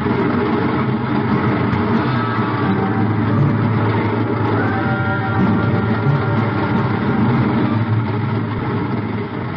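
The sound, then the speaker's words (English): A heavy train thunders under a bridge in a continuous, thundering rumble, deep and loud throughout, with a steady grinding mechanical drone and no voices. “I reach up and jerk it loose just as the train thunders under the bridge.”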